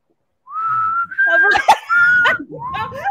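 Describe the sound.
Someone whistles a short tune with a few sliding, sustained notes, fairly loud, broken by brief breathy gaps. A dog-like yelp seems to cut in near the middle.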